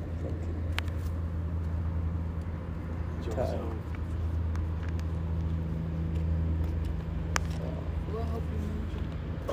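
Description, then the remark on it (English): A car engine rumbles with a steady low drone as a car comes along the speaker's street, holding a fairly even loudness throughout, with occasional clicks and muffled background voices. “Hey, this is a car coming from my street.”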